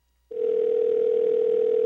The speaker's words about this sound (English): Come on, Arnie. Answer the phone. 3 rings.